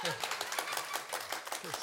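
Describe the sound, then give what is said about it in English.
Seven people clap in brief, uneven applause, the hand claps overlapping in a quick patter, fairly quiet, with faint voices murmuring underneath. “Seven people clapping.”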